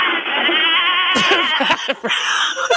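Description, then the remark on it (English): A goat bleats loudly, one long quavering cry that turns rougher and more broken toward the end. “We are going to hold the goat.”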